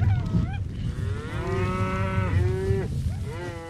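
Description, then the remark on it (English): Cattle moo loudly and repeatedly during a stampede, overlapping long bellowing calls over a steady low rumble of the fleeing herd, as riders guide and corral the cattle to keep the herd together. “With practiced hands, the riders guide the fleeing cattle, corralling them to keep the herd together.”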